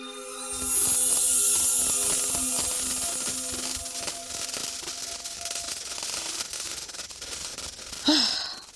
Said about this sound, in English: At last. I've been waiting all day for the crystalline crackling of Jack Frost to signal the end of the day.